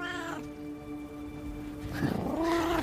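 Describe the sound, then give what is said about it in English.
A cat named Melangeth lets out a long, drawn-out meow that wavers in pitch, followed by a shorter second meow, fairly loud with no talking. “The cat settles peacefully on my lap.”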